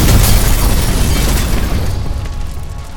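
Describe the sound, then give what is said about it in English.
A loud, explosive crash from a head-on train collision, two engines meeting cowcatcher to cowcatcher at high velocity over a ravine, bursts out at once, then rolls into a heavy low rumble that fades slowly over about three seconds. No one speaks. “Cowcatcher triangles exploded, meeting point to point at high velocity over the ravine.”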